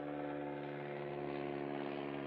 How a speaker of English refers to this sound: And what's this freaking plane doing? You know what? Speaking of planes, stunt plane.